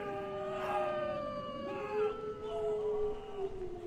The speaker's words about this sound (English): Sounds like wolves to me. They'd attack humans if they were hungry enough.